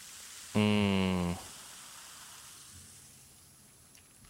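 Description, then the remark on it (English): A Diet Dr Pepper soda fizzes: a short, loud burst opens it, then a soft, steady crackling hiss of bubbles slowly fades for several seconds. No one speaks. “Listen to Fizz.”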